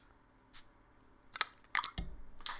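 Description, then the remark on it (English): A twist-off bottle of Crush Strawberry soda is popped open: a few sharp metallic clicks and a crisp hissing pop, followed by a brief soft fizz, with no talking. “It was 100% a twist off, but I went extra and popped it for the ASMR.”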